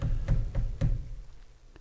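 Three quick knocks on a solid surface in a steady rhythm, then a pause and one softer knock, close and fairly loud with a dull, thudding body and no voices.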